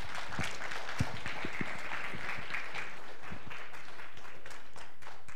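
A crowd applauds steadily for several seconds, a dense wash of many hands clapping with a few sharper individual claps standing out, fairly even in loudness throughout.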